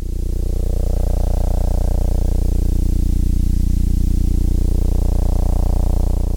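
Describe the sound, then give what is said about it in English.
Sonified oscillations of a small, quickly spinning dwarf star, a bit like our sun: an eerie, unbroken drone of many stacked low tones humming steadily at an even loudness, with a faint hiss above and no voices. “That eerie sound is a dwarf star, a small star that's spinning quickly, a bit like our sun.”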